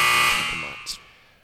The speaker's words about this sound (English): I was like, I can't hit the buzzer. I can't hit the buzzer, man, on this.